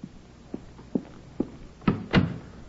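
A few soft, evenly spaced footsteps approach, then a door swings shut with a solid thump and a sharp latching knock right after.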